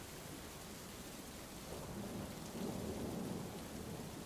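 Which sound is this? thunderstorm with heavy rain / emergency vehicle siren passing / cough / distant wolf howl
thunderstorm with heavy rain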